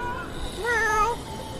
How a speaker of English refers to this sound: Pretty cool, cute little kitty cat hanging out on his little shelf up there. Don't wake the kitty cat. Oh, he almost fell. Oh shit, he almost fell, kitty cat.